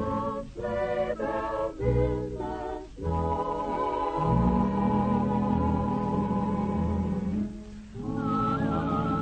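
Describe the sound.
A man whistles a smooth, lilting melody over a full orchestral backing, the tune rising and sustaining clearly in the foreground with no talking.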